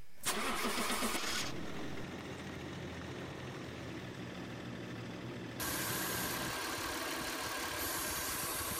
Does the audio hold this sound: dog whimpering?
no